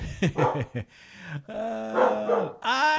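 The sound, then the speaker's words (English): A dog barks in a quick series of sharp yaps, then lets out longer, drawn-out whining barks. It is fairly loud, with a possible voice mixed in. “No, the dog is going.”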